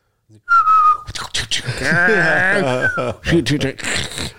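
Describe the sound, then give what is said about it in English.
A short, clear whistle rings out near the start, a few bright notes gliding slightly in pitch, before a voice takes over with a brief whistled slide mixed in. “He made himself an office in one of the rooms, and he was, you know, he's always so happy and whistling and singing to the radio and all that while he was working.”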